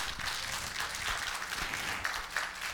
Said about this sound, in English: And while you're turning there, it's good to have several visitors here this morning. Some folks that you have seen before. Go ahead, you can give them a hand clap.